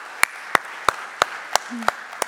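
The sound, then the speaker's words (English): Applause arrives as seven sharp, crisp claps in a steady, evenly spaced rhythm, each bright and percussive, with a faint low murmur between them. “And I'll show you that is worth clapping for.”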